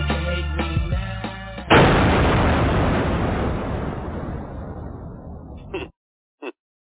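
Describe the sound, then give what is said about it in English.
Music plays briefly, then a loud explosion bursts in and rumbles into a long, fading roar that cuts off abruptly, followed by a couple of faint short clicks in near silence. “That explosion is like on a delay.”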